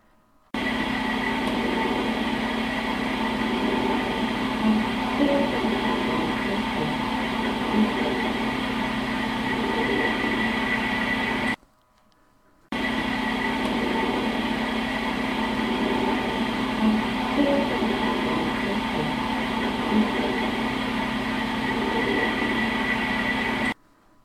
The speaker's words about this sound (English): I call this one a humming EVP because it sounds like someone humming an upbeat tune. I will play this soundbite twice.